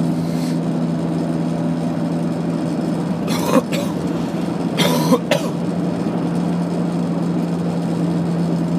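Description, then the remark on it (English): Two sharp coughs about a second and a half apart, from a person coughing out a cold, heard over a steady low engine hum, like from inside a moving vehicle. No one speaks. “I think I'm coughing out the fucking cold, eh? I'm getting most of it out.”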